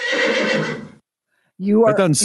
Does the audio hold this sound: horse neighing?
yes